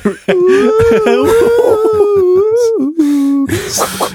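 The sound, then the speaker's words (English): A person imitates a whale call with a long, wavering, moaning hum that slides up and down in pitch, fairly loud, broken by a brief pause near the end. “Like get the whale sound ready.”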